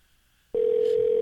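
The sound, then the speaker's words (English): After a quiet moment, a steady telephone dial tone, heard while placing a call, switches on abruptly and holds at one loud, unwavering pitch until the end. “I feel like we're prank calling.”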